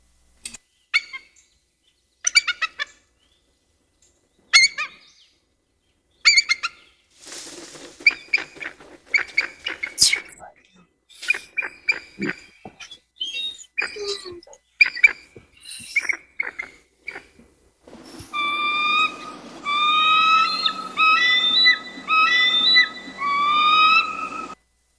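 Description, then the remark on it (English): Bald eagle calls ring out in bursts of high, thin chirping whistles and chattering notes. Some are short and staccato, others rapid piping series, with clear pauses between phrases. “So here's the bald eagle.”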